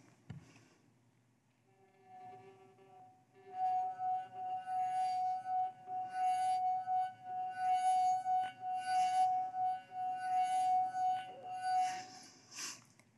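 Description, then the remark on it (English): A drinking glass rings out as a finger circles its rim, a pure steady tone that swells in after a soft start and holds clear and loud for about ten seconds. “Now, joy is like the hidden song in the glass. You can't see it on the outside, but with the touch, with the touch of Jesus, with the presence of Jesus, the joy comes out.”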